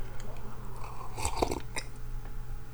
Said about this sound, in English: A little sip of Wawa coffee here.